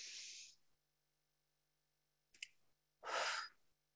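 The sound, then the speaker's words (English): Audible breathing with no talking, as a breathing exercise in through the nose and out through the mouth: a breathy exhale, a pause, a short sharp intake of air, then another long airy breath out. “Breathe in the nose and out the mouth.”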